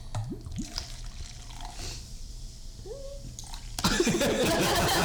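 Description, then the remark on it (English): Liquid glugs and trickles out of a bottle into a glass with a rising, gurgling pitch, a little bonus pour; toward the end voices and laughter come in over the pour. “A little bonus pour.”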